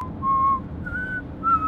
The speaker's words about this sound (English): What's going on with this whistle? His bottom lip comes way out here.